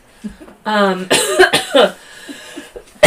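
A few quick, throaty coughs burst out, the first with a rough voiced rasp, followed by quieter breathy sounds and a short pause.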